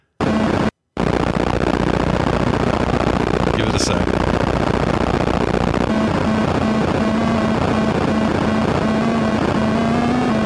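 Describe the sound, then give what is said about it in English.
A harsh, crude Atari 2600 style video game helicopter sound, heard at the game's ending as the helicopter picks up and leaves: a loud, gritty, choppy noise loop that drones steadily, with a low buzzing tone joining midway. A voice speaks briefly near the start. “That is such an Atari 2600 sounding helicopter.”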